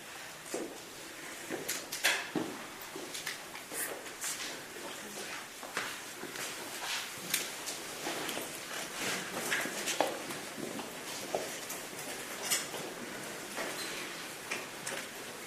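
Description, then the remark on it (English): Many people get up and walk back to their chairs around a room, with scattered footsteps, scraping and light knocks overlapping in an irregular clatter at moderate volume, and no one talking. “Back to your chairs.”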